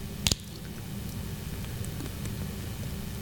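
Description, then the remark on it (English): A single quick sip and swallow of water, brief, followed by a few seconds of quiet, steady room hum with no talking. “And so before we begin, I'm going to take a drink of water.”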